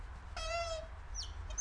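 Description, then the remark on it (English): A pink marker pen squeaks against a board while drawing: one long, whiny squeal, then a couple of short chirpy squeaks, with no one talking. “These pens are struggling a little bit.”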